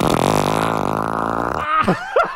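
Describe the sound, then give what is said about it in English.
A long, loud, buzzing fart, played in a game of Guess Who's Gas, holds steady for about a second and a half, then ends in a couple of short, squeaky sputters that swoop up and down in pitch. “All right, so we are ready to play Guess Who's Gas.”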